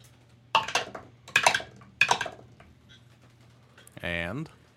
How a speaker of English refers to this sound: And I rolled 3 dice.